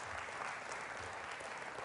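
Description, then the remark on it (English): An audience claps hands in praise, a dense, steady wash of many overlapping claps at an even, sustained loudness with no voices standing out. “Everybody give them a hand clap of praise.”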